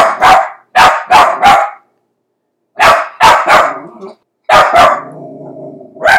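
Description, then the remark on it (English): A small white female terrier lets out loud, shrill, screaming barks in rapid bursts of three or four, with the later yelps trailing off into a drawn-out whine. “She barks a lot, this loud scream bark. Oh, here, I'll give you a little sample.”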